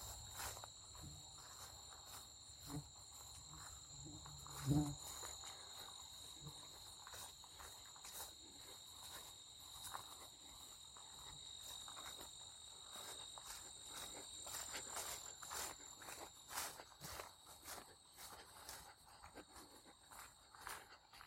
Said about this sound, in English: And some good insect action, so I'm going to point you guys towards that noise.